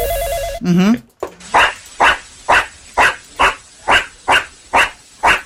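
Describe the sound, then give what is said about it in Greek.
A dog barks nine times in a steady, evenly spaced rhythm, each bark loud. A brief tonal, jingle-like sound precedes the barking. “Ψάχνουμε τι ράτσα σκύλου είναι. Και γαυγίζει.”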